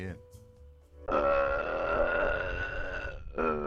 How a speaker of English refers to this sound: Yeah. I'm all burped out. You know what, though? Your burp doesn't change from when you're a 9-year-old or 10-year-old to when you're a 40-year-old.